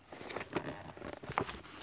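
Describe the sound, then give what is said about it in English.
Soft, papery rustling and light patter as pages of a big green book are shuffled and flipped to Tehillim (Psalm) 148, with a few brief, slightly sharper flicks. There is no speech. “Shuffling around.”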